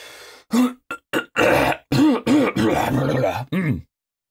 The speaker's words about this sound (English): That was a cough and a half. Goddamn. Yeah, I was like building up.